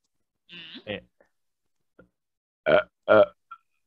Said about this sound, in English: Oh, God, that was a weak burp.